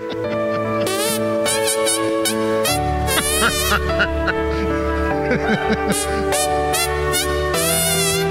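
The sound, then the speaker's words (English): A man plays a Christmas favorite by making fart sounds with his hands: buzzy, honking notes rise and fall in pitch to carry the melody over a steady, loud musical backing. “This is some of your Christmas favorites performed by a guy making fart sounds with his hands.”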